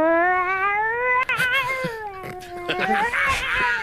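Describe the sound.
A listener known for talking to cats imitates a cat with a long, drawn-out, wavering meow that rises and falls in pitch, loud, followed by a few shorter yowling bursts.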